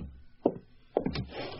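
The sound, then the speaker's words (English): A door opening: a soft clunk, then a quick cluster of latch clicks and knocks followed by a faint rush of air, all fairly quiet, with no voices. “I'll get the door.”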